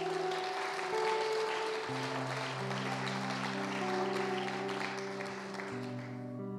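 A church audience applauds mothers who pray for their families, a dense, even wash of clapping throughout over sustained keyboard chords that shift pitch every couple of seconds.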